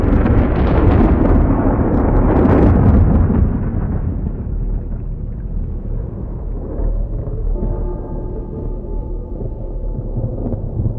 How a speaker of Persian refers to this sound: شهاب سنگ به زمین برخورد می کند و در اقیانوس فرو می رود. نوری بر سطح کره زمین می درخشد. از محل برخورد شهاب سنگ موج بسیار عظیمی اقیانوس را در بر می گیرد. موج دایره وار بزرگ و بزرگتر می شود. امواج اقیانوس در جوش و خروشند.